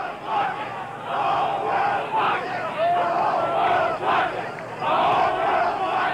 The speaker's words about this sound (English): The whole world is watching, chants the crowd on the side.